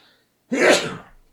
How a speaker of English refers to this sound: Excuse me. Nothing more fun than sneezing during a pandemic update.